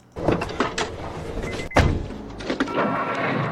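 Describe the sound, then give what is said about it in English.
Rustling and shuffling as someone climbs into a car, then a single solid thunk as the car door shuts, followed by a few softer movements inside the cabin. “So let's get in the car, shall we?”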